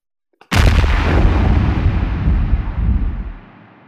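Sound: explosion sound effect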